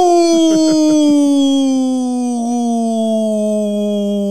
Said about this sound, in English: And now it sounds like a crashing plane. It's like a siren.